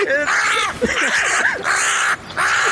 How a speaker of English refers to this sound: Oh, my God. That sounds like a very, appropriately sounds like a bird that is not well. Yeah, this bird's getting attacked by multiple birds, man. This is real deal shit right here. Yeah. A crow fight.